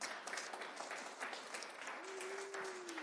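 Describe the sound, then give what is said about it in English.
Steady applause from an audience for the speaker's wife as she is invited up to join him, dense and even throughout, with no speech over it. A brief sustained low tone rises faintly out of the clapping near the end. “If you agree, applaud.”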